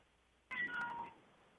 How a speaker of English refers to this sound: Did I just hear a cat? Yes, I did. whose cat is that? That's my cat. Okay. Cat is listening too.